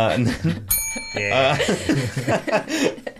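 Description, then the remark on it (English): A small hand bell, given by a man named Steve, gives one bright ring during a card game that lingers for nearly a second before fading, while people talk and chuckle around it. “thank you to this guy named Steve who gave me the bell on the last episode.”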